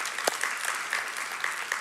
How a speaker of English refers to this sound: Ooh, clap for Jesus.